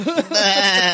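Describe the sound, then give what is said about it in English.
A person imitates a sheep, letting out one drawn-out, quavering "baa" bleat that lasts about a second, loud, with no other talking. “I just saw a bunch of sheep coming out, walking out of the film.”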